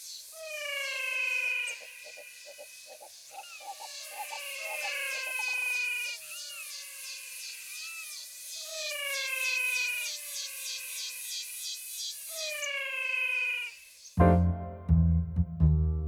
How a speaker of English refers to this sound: Some amazing frogs we recorded. They have a voice that sounds like something you might find in an old science fiction story set on the planet Venus. I call them the singing frogs of the Pantanal. Aren't they sweet? What a lovely sound.